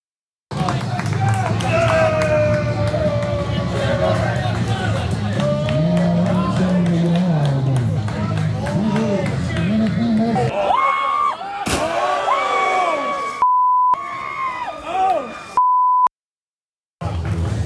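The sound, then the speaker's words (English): At an outdoor backyard wrestling event, a loud crowd chatters and cheers, then a single sharp crash bangs out, followed by voices talking with a couple of short electronic beeps cutting through. “from Game Changer Wrestling's Backyard Wrestling event, collage with some crashes, booms, bangs, short conversations”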